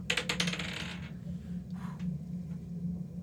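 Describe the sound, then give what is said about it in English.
A d20 die is rolled for a strength check, clattering across a table in a quick burst of rapid hard clicks that slow and fade within a second, followed by a couple of faint ticks over a steady low hum. “Okay, so roll your strength check.”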